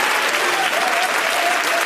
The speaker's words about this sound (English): Come on, if that was you in this place, if you had a mess and God did something, why don't you clap your hands unto the Lord and let him know I'm thankful that you messed with my mess.